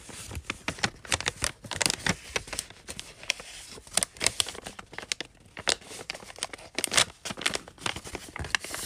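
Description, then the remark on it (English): A small brown paper gift bag with little pumpkins printed on it crinkling and rustling in quick, irregular bursts of sharp, crackly noise, continuing steadily throughout with no voices. “But anyways, so first we had this little like paper bag.”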